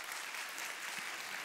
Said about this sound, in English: Come on, let's give God a good clap offering. Can we do that?